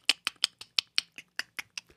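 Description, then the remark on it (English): A keyboard sound effect: keys clacking in a quick, fairly steady run of about a dozen crisp clicks over two seconds, with no voices present. “Do you hear this incredible keyboard sound effect I can do?”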